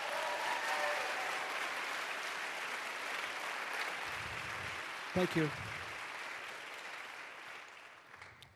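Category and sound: crowd, audience applause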